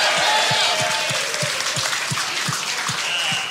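An audience applauds loudly and steadily for the whole stretch, a dense wash of clapping with a regular low thump pulsing underneath about three times a second.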